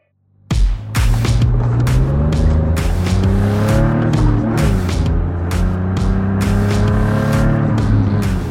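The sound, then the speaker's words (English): A car engine revs hard, its pitch climbing and dipping repeatedly, punctuated by sharp crackling bursts, running continuously for several seconds with no talking. “And those car sounds, by the way, courtesy of Colin Schrome.”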